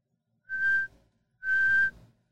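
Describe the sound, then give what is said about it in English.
Two short, steady blasts on a whistle, fairly loud, blown to signal halftime, separated by a brief pause, with no one talking. “We never blew the whistle.”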